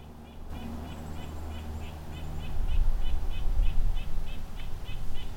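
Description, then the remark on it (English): A bird in distress calls over and over in quick, sharp, high-pitched chips at a steady agitated pace, with a low rumbling background that grows louder partway through. “From what I gather, it's a bird in distress, and so the other birds are curious.”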